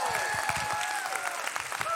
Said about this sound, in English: Can we put our hands together? Let's give Jesus Christ a big hand clap of praise.